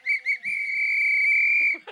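A loud, shrill whistle sounds two quick short blasts followed by one long sustained blast, with no talking over it.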